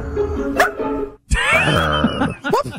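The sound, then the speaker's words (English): A man imitates a wolf, yipping at a body of water with high, strained yips and whining howls, several rising and falling vocal bursts separated by a brief pause, loud and alone without any talking. “I want to hear the wolf guy again because that yip is particularly good.”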